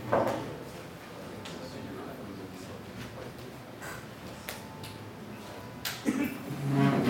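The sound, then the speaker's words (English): A few doors thud and clunk shut at scattered moments as a gathering is about to begin, with faint murmuring voices and shuffling in the background between the closes. “You want to close the doors if possible?”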